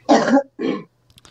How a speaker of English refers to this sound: I got a cough. Excuse me.